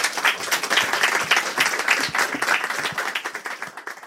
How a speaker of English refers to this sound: Well, we thank you for your attention, and please join me in one more time giving an applause